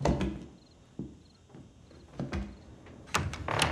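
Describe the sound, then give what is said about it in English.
A door leading to stairs up to another floor of a house creaks and clunks open amid a string of sharp knocks and thuds, ending with a louder clatter, without any talking. “Ah, here's the door. Okay, up the stairs we go.”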